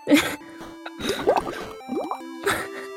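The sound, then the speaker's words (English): Wet bubbling and gurgling in a glass of water, like air blown through a straw, coming in several fairly loud bursts with squeaky, gliding tones between them. “That was blue bubbles in my water.”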